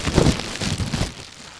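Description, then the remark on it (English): Crinkly rustling of a piece of paper, then a bag of Takis, then a plastic bag filled with stuff, handled in a few dense, crackling bursts that fade out toward the end, with no talking. “Well, the first one was a piece of paper, the second one was a bag of Takis, and then the third one was a plastic bag filled with stuff.”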